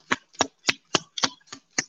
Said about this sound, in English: All right. Shuffle cards for you guys.